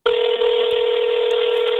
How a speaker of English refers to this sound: Let me dial the number and I'll put it on my speakerphone here on the iPhone. And you ought to be able to hear it over the mic here.